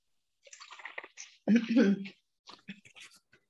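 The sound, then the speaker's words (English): Someone takes a quiet sip of water, with soft slurping and mouth sounds, a brief throaty gulp in the middle, then a few faint wet clicks trailing off. “Just getting a little sip of water.”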